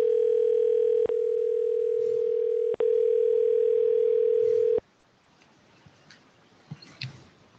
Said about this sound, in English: I'm going to call you on your phone number, okay? On my cell phone? I'm not going to say it out loud because everybody's going to hear me. So, let me dial that in. See which one it goes in. It's dialing now.